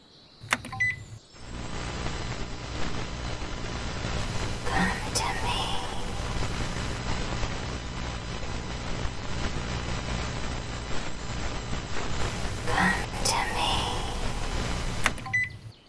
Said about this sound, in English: Well, shit. Nothing but static all over the dial. Nothing.